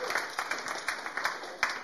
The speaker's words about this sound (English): Thank you. Give a clap to our actor. Good job.